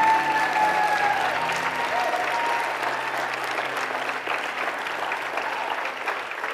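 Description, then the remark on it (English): A church audience claps together in sustained applause as a clap offering to the Lord, a dense, steady wash of hand claps for several seconds, with faint voices and cheers mixed underneath. “Come on, let's give the Lord a clap offering.”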